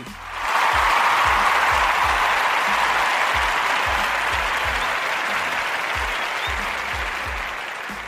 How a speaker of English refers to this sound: Yeah, applause for that.